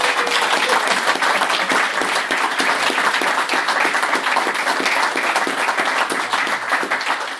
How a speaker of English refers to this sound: We're still going to give him a round of applause because that was great.